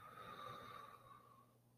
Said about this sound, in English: Taking a deep breath in through your nose. And imagine the belly filling with air, almost like a balloon is expanding.